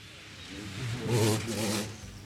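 A Nissan Le Mans race car drives past at an easy pace, its engine note rising and swelling to a peak before easing off, moderately loud with no hard revving.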